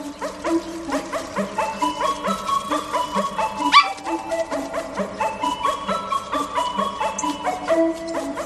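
A bouncy orchestral tune plays steadily while a dog's barks are woven rhythmically into the melody, repeating throughout with a brief pause near the middle.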